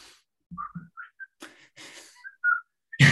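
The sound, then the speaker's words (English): Someone whistles a short melodic tune in clipped rising notes, broken up by breathy bursts and a sudden noisy puff at the end, with no talking. “I knew exactly where it was going, not by the whistling, but by the song, In the Hall of the Mountain King.”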